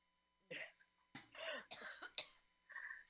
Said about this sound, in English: Sorry. I'm coughing because of weed, not because of Corona.